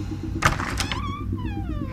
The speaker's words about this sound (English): I opened the door slowly.